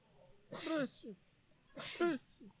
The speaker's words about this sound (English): I need to sneeze.